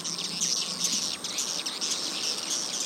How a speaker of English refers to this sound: Would-be swiftlet farmers blast the calls from speakers attached to the building.